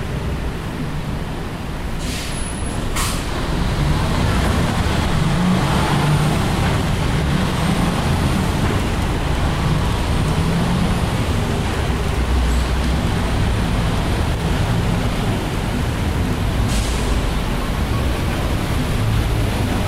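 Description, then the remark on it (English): Steady rumble of city traffic on University Street at about 2:20 as several cars and heavier vehicles roll past, with a brief hiss like an air brake early on and continuous road noise throughout. “Quite a few cars right now on University Street.”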